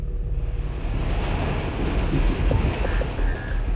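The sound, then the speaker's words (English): A train travelling from Pennsylvania to New York City rumbles steadily along the rails, a dense low-pitched roar with faint rhythmic clatter of wheels, with no voices. “took a train from Pennsylvania to New York City.”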